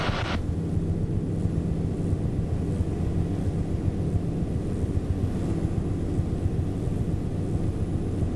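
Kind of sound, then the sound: vehicle, small propeller airplane engine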